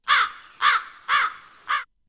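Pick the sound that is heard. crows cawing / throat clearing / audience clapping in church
crows cawing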